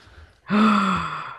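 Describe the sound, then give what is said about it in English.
A sharp, voiced gasp starts abruptly after a brief quiet moment and holds for nearly a second, loud, with a breathy, slightly tonal quality before trailing off. “That was an audible gasp right there.”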